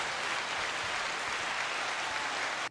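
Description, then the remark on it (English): A pressed round-of-applause sound effect: a crowd applauds steadily, many hands clapping in a dense, even wash of sound that holds level throughout, then cuts off abruptly at the end. “I was going to press it again, but if I press it again, then it restarts, and then we're just like in a cycle of just round of applause.”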